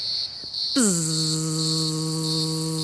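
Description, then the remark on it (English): A steady, high-pitched cicada drone pulses throughout, and after a moment a low, sustained human buzz joins in, a voice imitating the insect's sound over it. “Can you make the sound of a cicada or a cicada?”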